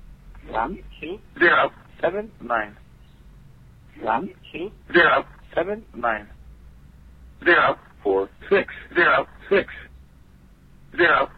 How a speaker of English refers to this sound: And this just showed up in the past couple of weeks. These number stations on voice over IP phone numbers.